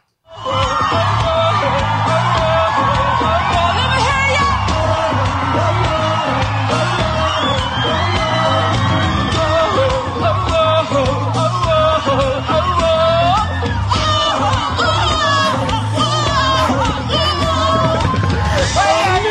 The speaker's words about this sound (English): what happens at a … concert when the singer sings out a girl in the crowd to sing along to what she's singing to